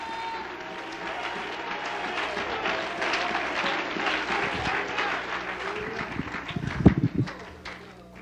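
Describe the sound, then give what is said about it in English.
A large crowd claps steadily throughout in praise during a sermon, a dense wash of applause from many hands, with a few louder, sharper claps and thumps near the end as voices murmur underneath. “Oh, let's clap our hands and praise him.”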